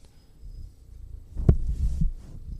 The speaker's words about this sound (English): See, you hear him purring? Yes, you're rubbing your face on the microphone. Yeah, and all right, he's climbing up on my chest. Okay, he's backing up.